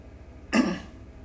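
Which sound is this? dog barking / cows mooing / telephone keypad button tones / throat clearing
throat clearing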